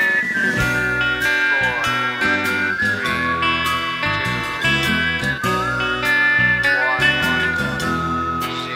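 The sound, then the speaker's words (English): A high, wavering whistled melody opens a rock and roll song, running over a full band with bass, drums and arpeggiated chords, steady and fairly loud throughout, with no talking. “Well, it starts off with that whistling.”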